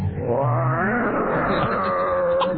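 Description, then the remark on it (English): A woman's drawn-out, wavering cry as a cat scratches her, loud, sliding in pitch like a low, stretched moan, with no words spoken. “And then she's starting to cry.”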